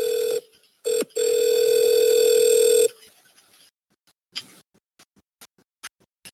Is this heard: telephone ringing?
yes